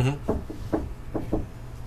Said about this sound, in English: Yeah, hold on. Did someone knock on the door? Who that is at the door?